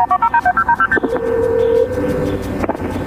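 A quick run of about ten short telephone keypad beeps at shifting pitches, followed by a steady sustained tone over a low rumbling background, with no voices, as a 911 emergency call is placed after a shooting at a Taco Bell.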